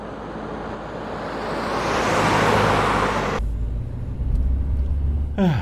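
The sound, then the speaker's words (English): A car drives along a road, its broad tire and engine roar swelling loudly before cutting abruptly to a lower, steady interior rumble. “I didn't realize I'd be spending half my time riding in a car.”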